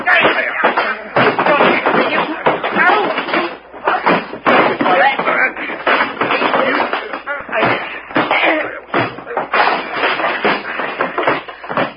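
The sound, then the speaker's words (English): A chaotic fistfight scuffle, with rapid irregular thuds and blows, shuffling and banging, loud, continuing almost without pause while voices shout and grunt through the commotion. “Gee, that was a fight.”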